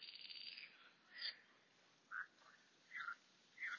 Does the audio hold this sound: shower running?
no